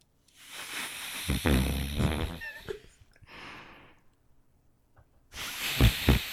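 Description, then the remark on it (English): A man imitates his brother's snoring into the crook of his elbow, with muffled, raspy inhales and hissy, breathy exhales, fairly loud, with a quieter pause before a final rough burst. “He's mimicking his brother's snoring.”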